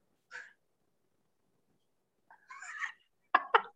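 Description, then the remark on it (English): A cat meows several times: a short mew, then a longer drawn-out meow after a pause, and finally two quick sharp chirping cries close together. Moderately loud, with no talking. “I'm just like, the cat even came running here like, what the f-?”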